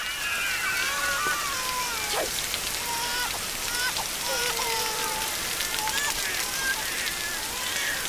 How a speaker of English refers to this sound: And there's shots like when Suki is leaving her home, there's basically like this shot down an alley and it's pouring rain and it's her turning and walking towards the train.